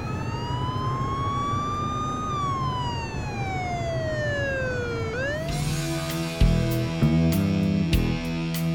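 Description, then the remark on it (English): Emergency sirens from sheriff cars and fire trucks: a loud wail rises and falls slowly, then gives way to a harsher, choppier siren blare over a rumbling engine. No one speaks. “Sheriff cars and fire trucks.”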